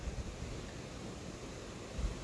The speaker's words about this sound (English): God damn, the wind is blowing through my shirt.